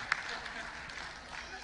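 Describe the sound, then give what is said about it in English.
An audience claps in a steady, dense patter with one sharper clap near the start, fairly quiet overall, with faint crowd murmur underneath. “You can go ahead and clap, but I need your money.”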